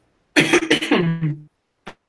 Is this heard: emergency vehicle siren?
no